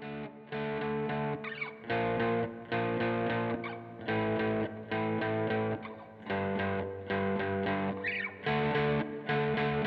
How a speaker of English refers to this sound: Next, Drew played kind of a beefy distortion part with lots of heavy chugging to really fill out the sound and make it heavy.